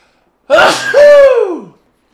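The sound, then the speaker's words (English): One loud sneeze: a sharp breathy intake that bursts into a voiced, downward-sliding "choo," lasting just over a second, with no talking around it. “Oh, I gotta sneeze.”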